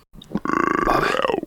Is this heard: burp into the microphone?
yes